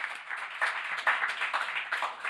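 Steady applause from an audience thanking a discussion panel, a dense wash of many hands clapping at once with a few sharper claps standing out, sustained at a fairly even loudness throughout.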